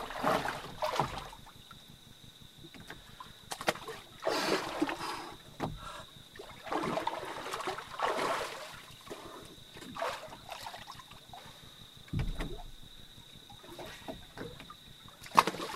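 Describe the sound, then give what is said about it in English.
Repeated splashes and sloshing water as someone jumps into and moves through a river to wash off, in close, irregular bursts, with a steady high-pitched whine in the background and no talking. “But yeah, gonna jump in the river now and wash off the day's exertions.”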